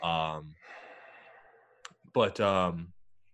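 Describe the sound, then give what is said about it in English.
A long breathy exhale between two voiced, groaning sighs, with a single sharp click in the middle, from someone inhaling and exhaling a dab hit; no words are spoken. “I got sidetracked by your dab, bro.”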